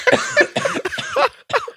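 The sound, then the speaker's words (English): A man coughs hard after water went down the wrong pipe, a rapid series of harsh, raspy bursts, about five close together and then a short pause before two more, loud with no talking. “I had water went down the wrong pipe.”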